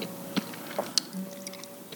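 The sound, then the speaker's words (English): A few sparse, crisp crunches of someone biting into a snack, spaced irregularly with quiet chewing between them, fairly soft over a faint steady hum, with no talking. “You can crunch in so many different ways.”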